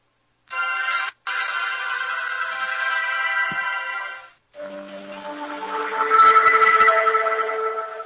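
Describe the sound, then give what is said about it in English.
A mobile phone running MobileSpeak, unplugged from the computer and switched back on, plays its startup tone while booting: a bright, sustained musical jingle in two parts with a brief gap, the second swelling louder before fading. No one speaks over it. “We're waiting for the phone to boot up here.”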